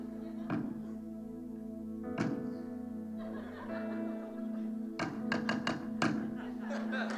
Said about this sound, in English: But here, I want you to begin to hammer that. You might need to put it on the floor, and I need you to kind of bang quietly so you don't distract anyone.